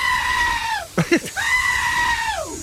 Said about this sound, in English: Now this is a normal goat, right?